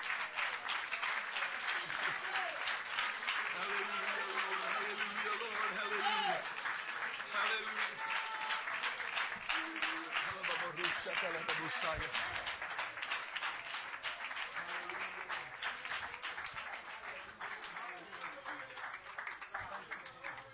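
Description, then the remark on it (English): An audience stands and claps hands loudly and steadily for about twenty seconds in praise, a dense rhythmic wash of many hands, with voices calling out faintly beneath the clapping. “Come on, stand up and clap your hands and praise Him.”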